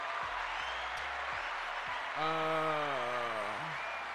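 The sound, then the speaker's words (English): A handful of sharp hand claps spaced about half a second apart ring over a steady crowd-like hiss, followed by a single voice letting out a long, wavering cheer. “Let me clap that up.”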